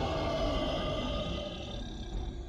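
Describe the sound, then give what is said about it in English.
A loud, deep roar from a water monster rising out of a river rumbles continuously for a few seconds, raspy with a growling low end, fading only slightly toward the end, with no voices present. “However, the monster lying at the bottom of the stream becomes aware of the person above, and it suddenly rises out of the water and makes a loud roaring sound.”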